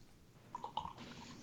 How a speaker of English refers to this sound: Somebody getting drunk. Yeah, I know. Somebody was pouring up.